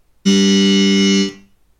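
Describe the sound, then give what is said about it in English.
A harsh, loud wrong-answer buzzer for a quiz sounds once, a flat low-pitched rasping tone lasting about a second before cutting off with a brief fade. No one speaks. “I don't know why I picked that, but here's my if you get an answer wrong, here's my buzzer.”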